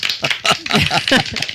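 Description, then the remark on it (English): Quick, irregular hand claps, a handful of sharp slaps in loose rhythm, mixed with someone talking and laughing over them. “You're clapping so much.”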